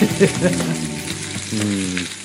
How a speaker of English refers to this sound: Always gotta let that sizzle. I love that sound. Yeah, it's a good sizzle. It is. I should have that as my ringtone. The sizzle, yeah. The sizzle's good.